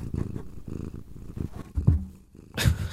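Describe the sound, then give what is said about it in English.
A domestic cat purrs by the microphone while sitting in a lap, a steady low rumbling throb that pulses rhythmically, with a brief burst of rustling near the end as if fur brushes against something. “Hey, look, my cat has chosen to join us. I'm trying to get her up by the microphone.”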